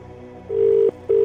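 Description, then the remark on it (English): A telephone ringback tone on an outgoing call that goes unanswered: steady, clear electronic beeps in a short on-off pattern, two bursts close together, loud and alone with no talking. “Two rings. Three rings. Four rings.”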